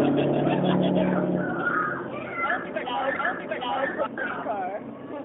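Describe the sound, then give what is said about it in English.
A bus rumbles past with a loud, low engine drone that eases off after a couple of seconds, followed by overlapping voices and background chatter. “Where'd that bus come from?”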